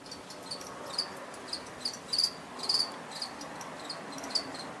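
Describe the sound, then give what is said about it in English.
Crickets chirp in quick, high-pitched bursts repeating across a few seconds over a soft, steady background hiss, with no voices present. “Crickets, people, crickets.”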